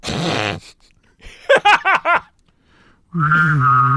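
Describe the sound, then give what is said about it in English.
A voice imitates a UFO spaceship by humming and whistling at the same time: a buzzy hummed tone, then four quick warbling swoops in pitch, then a long steady hum layered with a whistle-like tone, fairly loud throughout. “This is my UFO noise.”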